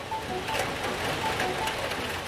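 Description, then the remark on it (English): Heavy, torrential rain pours down in a steady, dense hiss with no letup, the constant wash of water broken only by faint tonal traces. Miami on Super Bowl Sunday, February 4th, 2007, with wind gusts of 20 miles per hour from the north. “But there are torrential downpours, wind gusts of 20 miles per hour from the north.”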